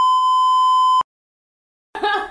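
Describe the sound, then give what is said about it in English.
A single loud, steady censor bleep tone at one high pitch lasts about a second and cuts off abruptly, followed by a short silence before someone starts talking. “Do I have to bleep that out now? Bleep it out.”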